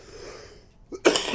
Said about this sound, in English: Ugh, I'm just thinking about it. It's making me cough. I hope I'm not sick on the cruise.